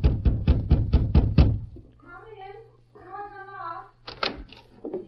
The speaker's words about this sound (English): They walked the remaining distance, and when a glance through the living room window showed Laurie to be alone there, the masked man knocked on the front door.